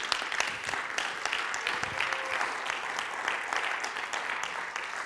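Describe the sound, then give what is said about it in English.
Steady applause from an audience, many hands clapping at once in a dense, continuous patter that holds at an even level throughout without any voices breaking through. “Come on, let's give him a good round of applause.”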